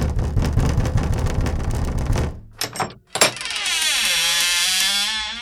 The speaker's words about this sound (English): I know that knock anywhere.